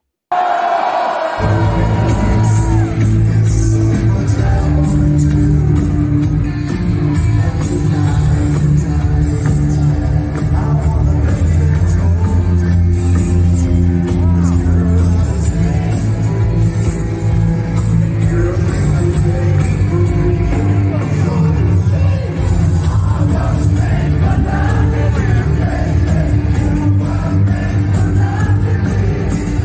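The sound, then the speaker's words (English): A loud live concert recording from Dalhalla: band music played at full volume with a roaring, cheering crowd underneath, continuous for the whole stretch with no speech. “But before we do that, let's see a live take from Dalhalla.”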